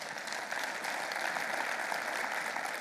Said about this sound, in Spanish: Si Dios le habló esta tarde, podría darle usted un aplauso.